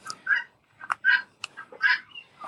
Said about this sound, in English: Is that the guinea hens? Those are guinea hens, and she knows how irritating guinea hens are to me, and she did that on purpose. Yes, that okay. is a guinea hen, and they never shut up.